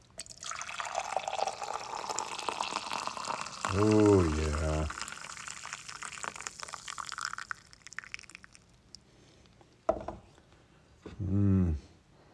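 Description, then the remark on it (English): A steady stream of coffee pours from a French press into a cup for several seconds, trickling off near the end, while a voice briefly speaks over it and again afterward. “And now let's do the plunger and let's pour it in the cup.”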